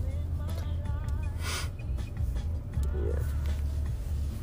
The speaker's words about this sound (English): That sounds like that door is frozen. Yeah, it was.